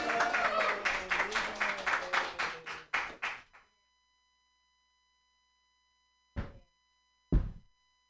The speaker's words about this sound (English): All right. Clap it up for me. Yay.